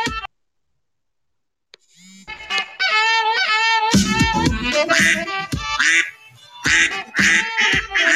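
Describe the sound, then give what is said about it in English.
Loud, nasal duck quacking, a rapid run of harsh honking bursts that starts after a moment of silence and keeps going for several seconds with short pauses between volleys. “I sense a duck in the room.”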